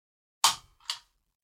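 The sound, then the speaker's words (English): An air-pressure stapler, not a regular one, is pressed with one finger, giving two sharp clicks about half a second apart: a louder snap on the press and a softer one on the release, with no talking. “Can you hear the clicking mechanism?”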